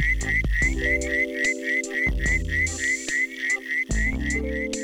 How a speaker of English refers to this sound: Predictably, this frog is so named because of its call, which often sounds like a whistle.